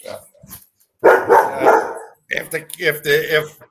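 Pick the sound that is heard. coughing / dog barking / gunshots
dog barking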